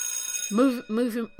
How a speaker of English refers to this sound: Here goes another bell.